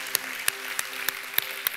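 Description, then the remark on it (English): An audience claps in steady applause of praise to God, with sharp louder claps standing out at irregular intervals above a dense wash of hand clapping. No one speaks. “Can we raise a hand clap of praise to our God?”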